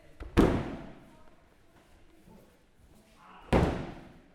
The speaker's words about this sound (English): Bodies were at this point slamming hard on the mats from practice moves, but shortly the real action would begin.